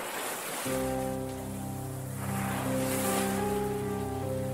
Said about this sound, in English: The sea, the raging sea. It makes such a thunderous sound against the jagged rocks below. The crashing of the waves and the feel of the wind.